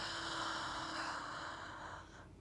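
A long, deep inhale drawn in steadily through the mouth, fairly loud, a breathy rush that holds for about two seconds and then tapers off, taken during a guided breathing exercise; no one speaks.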